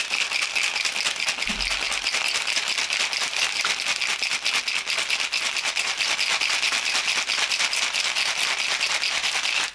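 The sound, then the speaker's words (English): A cocktail shaker is shaken hard and steadily for about ten seconds, ice rattling in a fast, dense, bright clatter at an even, loud level, with no talking. “But I do have little accessories that match. Let's shake this puppy up.”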